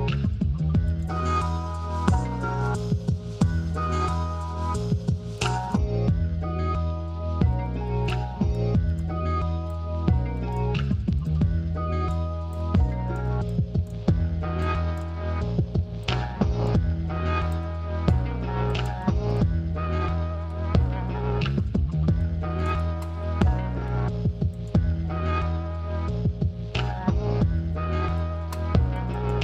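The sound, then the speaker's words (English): Loud, dense music with a heavily distorted, saturated sound: thick fuzzy low end and gritty harmonics throughout, played continuously in a steady rhythm without any voices. “Take some of this distortion off.”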